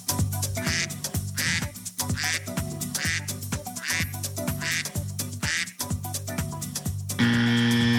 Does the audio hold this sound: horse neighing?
no